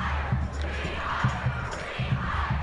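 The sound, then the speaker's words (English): A large crowd of students at a Kennedy Catholic High School rally and walkout shouts "rehire" in unison outdoors, voices merging into a dense, rhythmic chant with regular beats roughly every half second, steady and fairly loud throughout. “They are shouting, rehire.”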